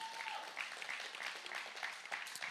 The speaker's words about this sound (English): We have plenty of single mothers, and they are amazing, okay? And we celebrate you for all that you're doing. Yeah. Amen. You can cheer that.